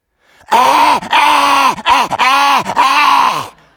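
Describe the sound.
A person imitates a dog with a stiff neck choking as it pulls against its leash: loud, strained, raspy gagging noises in about four harsh bursts, each dipping in pitch, with brief gasping breaks between them.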